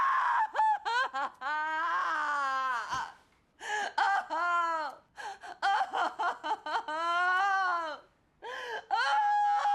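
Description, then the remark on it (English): A woman scream-cries loudly and without letup, long wavering wails broken by sharp, ragged gasps for breath, alone with no talking. “There is this sequence where she scream cries for, like, 8 minutes.”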